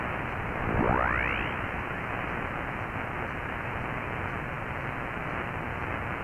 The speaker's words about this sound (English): Now that person's hard to hear. We have a lot of static and stuff because we're near power lines.